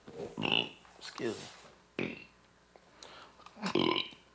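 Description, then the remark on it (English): A man belches several times in a row, loud, with short gaps of quiet between the deep, throaty bursts. “Nah, I'm just belching.”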